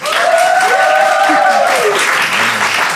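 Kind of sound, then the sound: crowd, audience clapping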